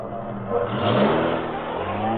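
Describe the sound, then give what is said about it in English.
A stolen getaway car's engine revs up and pulls away, the low throaty rumble swelling briefly then holding steady as the vehicle accelerates, with no voices over it. “All right, then get in the car with the rest of them.”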